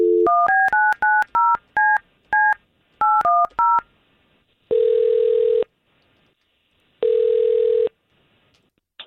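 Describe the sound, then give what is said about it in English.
A quick string of about eleven touch-tone beeps as radio morning show hosts dial a woman's phone number, then two long, steady ringback tones separated by a pause. Clear, with no voices. “We've got Tara's phone number thanks to you, and let's see if we can't call her”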